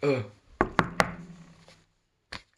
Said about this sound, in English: You're outside the Oracle's house. Knock on the door and speak to the Oracle.